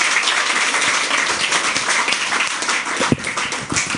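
An audience gives Tane a round of applause before his talk: a dense, even wash of many hands clapping at once for about four seconds, fairly loud throughout, with no voices standing out.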